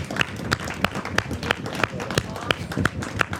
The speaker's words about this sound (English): We're clapping because Jesus is right here with us. So if we're going to give our Lord a round of applause, let's do it right.